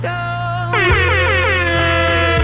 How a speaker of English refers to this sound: An air horn over ….